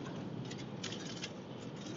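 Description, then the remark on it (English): Steady, dense hiss of rain and road spray heard from inside a moving vehicle driving behind a semi truck, with faint patter and a few brief brighter bursts over a constant wash of noise. “Ooh, and it's raining.”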